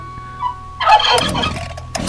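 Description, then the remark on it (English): A turkey gobbles loudly, a rapid warbling burst of throaty calls lasting about a second, after a faint brief note and followed by a short gurgle. “The turkeys feel bad too.”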